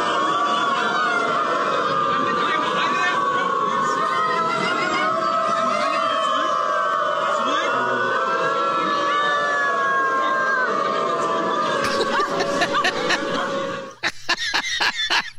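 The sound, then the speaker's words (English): A large crowd of an estimated 1,000 people who identify as dogs, gathered in Berlin, howls and barks together like dogs, a dense, sustained chorus of wavering, overlapping howls with scattered yelps, ending in a few sharp, choppy barks. “Hundreds of humans who identify as dogs have gathered in Berlin to howl and bark together.”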